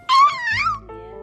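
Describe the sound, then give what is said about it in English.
A single drawn-out meow, sung by a human voice in a clear, moderately loud tone that rises and then slides downward, followed by a brief lower trailing note. “And cats and kittens say, meow. What do cat and kittens say?”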